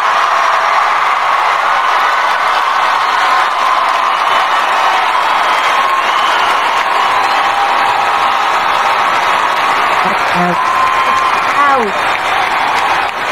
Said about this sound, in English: Yeah, I tried to leave all the applause in this